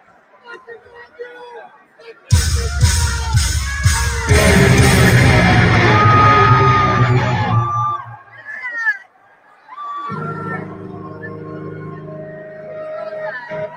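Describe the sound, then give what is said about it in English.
A loud concert crowd roars and cheers for several seconds, with one fan's voice screaming and yelling out above the noise before it fades into quieter crowd sound. “You're this douche screaming.”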